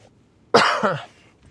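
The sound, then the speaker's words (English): A single dry, hacking cough from a person with fever and chills bursts out, sharp at the start and fading within half a second, with quiet room tone before and after. “Sorry, I got like a dry cough right now, plus like fevers and chills.”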